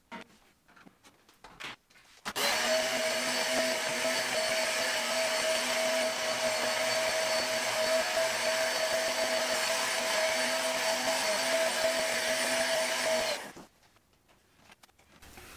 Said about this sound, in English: I'm going to empty this container again and we're going to vacuum for the third time.